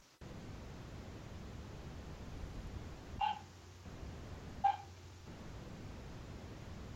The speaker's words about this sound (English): Okay, it's one of your ghost dogs again here in the background. Yep, sorry about that. Well, get the chappy off your balls and it'll stop barking.